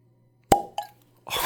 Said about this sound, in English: But now we're ready to pop this, what appears to be a real cork stopper. So here we go.